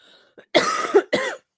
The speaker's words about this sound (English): That little mute mic button when you cough. I'm sorry.